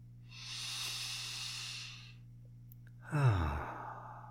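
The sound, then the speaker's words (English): A long, airy deep inhale lasting about two seconds, followed after a short pause by a heavier, voiced exhale that trails off like a sigh. Fairly soft, with no talking. “And so, won't you take a breath with me?”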